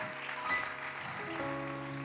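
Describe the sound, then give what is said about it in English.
An audience claps steadily for about two seconds, a dense wash of hand claps at moderate volume, with sustained musical tones humming underneath. “Give Jimmy a hand clap.”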